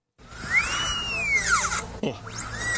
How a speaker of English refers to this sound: going to the dentist, recording the drill that the dentist was using on her.